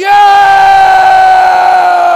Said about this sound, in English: If you can lift your hands, I'm going to ask you to lift your hands, and I'm going to say on one and on three, let us, you make the choice, give a shout to the joy of the Lord. One, two, three, roar! Do it again.